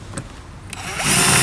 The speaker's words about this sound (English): I think a boy with a long drill would be able to do this. Shut up, my drill's bloody long enough.